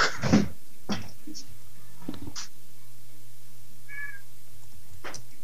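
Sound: cat meowing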